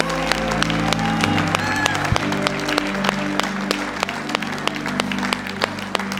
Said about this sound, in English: Come on, give him a hand clap of praise today. Give him a hand clap of praise today.